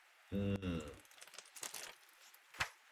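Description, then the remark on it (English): Someone takes a drink of water: a short low hum or throat sound, then soft crinkling of a plastic bottle and small wet gulps, ending with a sharp click. “Let me take some water first.”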